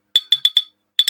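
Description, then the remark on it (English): Glasses clink together six times, bright: a quick run of four ringing taps, a short pause, then two more. No voices. “Oh, we're already clinking?”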